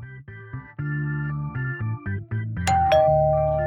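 An electronic doorbell chime at a studio plays a short, clear multi-note melody, loud, ending with a sharp click and a sustained ringing tone. No voices are heard.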